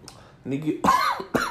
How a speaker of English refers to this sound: Damn it! I will get through a podcast without coughing one of these days.